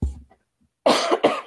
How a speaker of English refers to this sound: hear that coughing, I apologize. I think I'm coming down with a little bit of a cold, but oh my God.